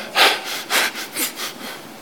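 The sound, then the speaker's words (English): Heavy, hard breathing: a quick series of rough, rhythmic breaths that gradually weaken, with no talking. “I know, I hear you breathing hard.”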